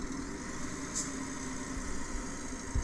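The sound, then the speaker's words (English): A motor engine is revved, rumbling steadily at moderate volume with a low, continuous drone, a brief hiss near the start and a short low thump at the end. No one speaks. “Alright, let's rev our engines and escape this lumberyard where this excavator lives for some reason.”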